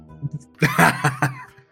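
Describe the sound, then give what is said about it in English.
Someone blows their nose in a few rough, snorting bursts that run together over about a second, loud against a quiet background. “I'll talk whilst … blows his nose”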